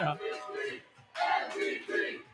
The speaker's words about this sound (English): they're showing highlights in the background now, so everybody's cheering. But Everybody's watching the game again right now.